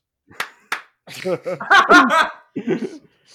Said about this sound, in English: I'm going to keep that bit in, but for those who know, whenever I need to edit something, I clap.